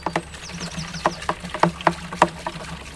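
Disinfectant poured from a green watering can splashes onto shoes in a series of irregular, wet spattering bursts over a low steady hum, with no one speaking.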